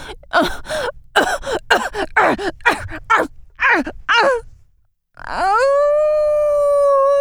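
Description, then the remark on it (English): A woman lets out a string of choppy, gasping vocal bursts, falls briefly silent, then breaks into a loud, long howl that rises and holds steady, with no talking. “Now she's sort of howling.”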